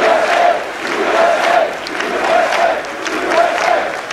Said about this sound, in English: You get the standing ovation here. You can hear the cheering. You can't see the standing ovation.